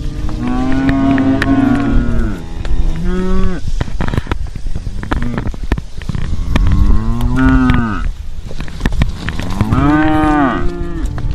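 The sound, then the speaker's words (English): Young cows moo loudly and repeatedly, several overlapping calls rising and falling, with wind and rustling in the background and no talking; the young cows are lined up, waiting on a start line. “Lined up, and well, these are not cows, these are youngins, which are basically young cows. As you can hear, they're very noisy, very rowdy.”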